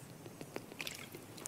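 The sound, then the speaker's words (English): Someone quietly sips water, with a few soft, wet mouth clicks and a gulp over a brief moment, with no talking. “As you turn there, I'm going to take a sip of water.”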